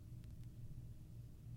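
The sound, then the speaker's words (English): A low rumble of thunder from a thunderstorm rolls steadily through the whole moment, deep and muffled, with no voices and only a faint hiss above it. “There is a horrible thunderstorm right now, so if we lose power, we'll figure it out.”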